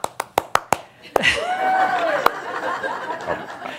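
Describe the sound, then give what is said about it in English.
A lone pair of hands claps about five times in a quick, even rhythm, sharp and crisp, then stops as a wavering voice rises and lingers, with one more stray clap. “You were the only one clapping.”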